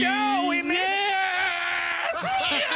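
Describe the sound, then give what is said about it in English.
A stadium crowd cheers and screams loudly and continuously, with many overlapping high-pitched voices holding long, excited cries for about three seconds. “Hear the crowd? The whole crowd is into it.”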